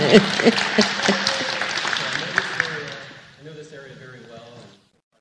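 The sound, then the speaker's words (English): A group bursts into dense, crackling applause for about three seconds, then the clapping thins out and fades while voices carry on talking underneath. “Oh, we should all like applaud.”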